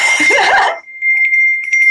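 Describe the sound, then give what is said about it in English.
A small bell is rung, opening with a busy jangling strike that settles into a clear, high-pitched ring, sustaining steadily with faint shimmering pulses as it fades. “And we actually have a little bell.”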